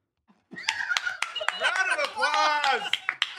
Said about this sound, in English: Round of applause.